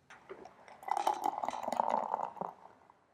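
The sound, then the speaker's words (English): Beer glugs and splashes into a glass, poured deliberately to make a sound, building to a steady bubbling pour with a fizzy hiss of foam before tapering off after about three seconds. “The way I poured it to make a sound also creates more foam.”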